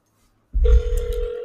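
A phone call to a fan ringing out on speakerphone: a soft thump, then a single steady, mid-pitched electronic ring tone that holds for about a second, with no one talking.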